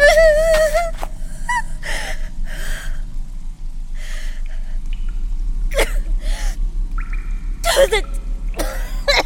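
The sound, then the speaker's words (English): Harsh, choking coughs and gasps from someone choking on dust come in ragged bursts, broken by strained breaths, with sharp wheezy catches and a low rumbling backdrop beneath. “Oh, the dust is choking me!”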